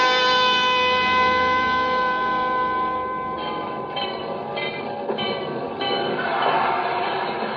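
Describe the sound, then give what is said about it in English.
Continuous rail noise at Penn Station in New York fills the scene: a loud, sustained train rumble with ringing metallic tones like a bell or brakes, and faint clattering bursts partway through, with no voices standing out. “Penn Station, a canyon of noise and activity.”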